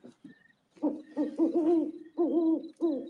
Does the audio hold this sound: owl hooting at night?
yes